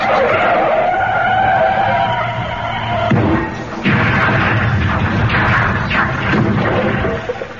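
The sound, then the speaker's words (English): A car skids with a loud, sustained tire screech for about three seconds, then drives into a house with a heavy crash followed by rumbling, clattering debris. No one speaks. “Yes, well, I thought we'd get out the car first.”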